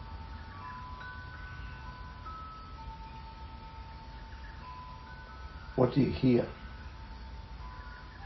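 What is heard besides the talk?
wind chime ringing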